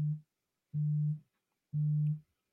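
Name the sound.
phone vibrating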